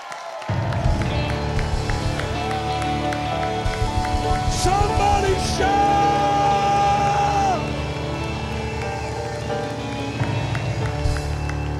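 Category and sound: crowd, audience shouting and applauding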